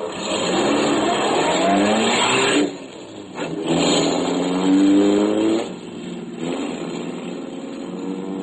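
Private detective Jerry Browning's car, with his new client Henry Sutton sitting alongside him: the engine roars steadily, rising in pitch as it accelerates, easing briefly twice as if shifting gears, then pulling hard again with a loud, continuous drone.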